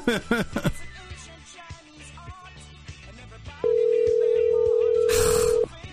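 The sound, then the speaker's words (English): A steady electronic phone tone sounds for about two seconds after a brief burst of chatter and background clatter, as an outgoing call rings through. “answer your phone!”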